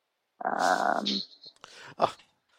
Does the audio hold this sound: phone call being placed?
no